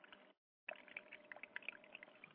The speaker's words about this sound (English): You may actually have a physical environment where you can have the sound of water playing on a fountain, and I'll show you mine. Hopefully, we will pick this up.